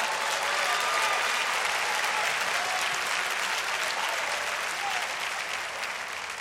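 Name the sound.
audience clapping hands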